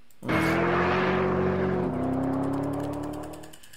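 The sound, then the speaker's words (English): A Ford GT car engine in a 2004 television commercial starts abruptly and revs loudly with a steady, throaty harmonic drone, shifting pitch slightly midway before gradually fading out. No talking is heard. “Why do you pump in fake sounds?”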